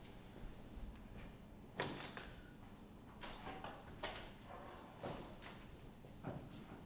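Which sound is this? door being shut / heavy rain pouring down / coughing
door being shut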